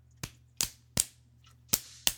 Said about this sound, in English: They're just slapping themselves in the rear end. You guys can't see this at home, but I'm witnessing two men pull their pants down and slap themselves on the ass